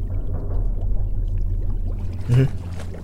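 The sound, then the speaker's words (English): Water bubbles and gurgles over a steady low rumble, with a short, louder surge of sloshing near the end, from a deep bubbling sea hole of salty, chilled water in the middle of a round sea cave just under 4 meters long. “Our little bubbling sea hole is in the middle, a deep abyss of ugly fish and salty, chilled water.”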